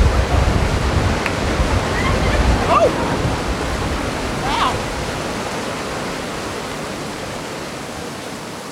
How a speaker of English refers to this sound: Oh, wow. Whoa, it's hailing.